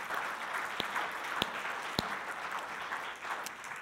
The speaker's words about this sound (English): Let's give these amazing families a clap offering.